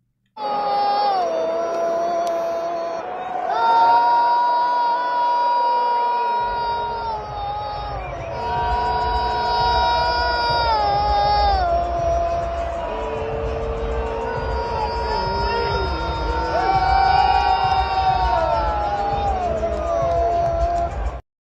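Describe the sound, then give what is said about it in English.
A large stadium crowd at a Chiefs game sings the tomahawk chop chant in unison, led from the Chiefs sideline during the game: a loud sustained wordless melody that rises and falls, over a low rumble of crowd noise that swells after the first few seconds. “There's a lot of video, but here is him leading a very bigoted tomahawk chop cheer on the Chiefs sideline during the game.”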